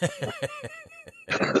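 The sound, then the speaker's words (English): A voice gives a quick series of rhythmic, laugh-like bursts that break into a harsh, raspy cough at the end, fairly loud and alone. “Oh, I made your cough come back, didn't I?”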